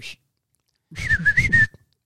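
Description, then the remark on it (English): A person whistles a short chirp, then after a pause a quick warbling run of rising and falling notes, mimicking a robot's beeping whistles. “He does a lot of fucking whistles, bro.”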